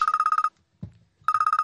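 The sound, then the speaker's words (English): A telephone rings with an incoming call, rapid, bright electronic trills in two short bursts separated by a pause, with a brief low thump in the gap; no one speaks. “Oh, we got another call coming in here.”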